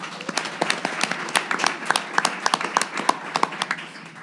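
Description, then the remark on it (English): A room full of people at Mosaic in Fulton Market, Chicago, claps steadily, the sharp overlapping hand claps forming a dense, lively wave of applause that holds at a moderate level throughout without any voices on top. “Let's give a round of applause for everyone in the room.”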